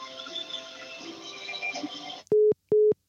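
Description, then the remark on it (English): A faint hissing phone line gives way to a telephone disconnect tone after a caller hangs up: two loud, steady beeps of equal length with a short silent pause between them. “And the calls have been dropped. Someone just decided to call in and hang up.”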